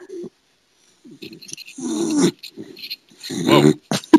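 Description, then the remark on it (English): Luna, a beagle, grunts and growls in low, rough bursts, a few separate rumbling grunts then two longer throaty growls, fairly loud with brief pauses between. “Oh, this is life with the beagle.”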